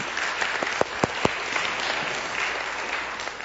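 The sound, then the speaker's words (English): An audience applauds, a steady wash of many hands clapping at moderate loudness, with a few sharper individual claps standing out near the start. “All right, clap for that.”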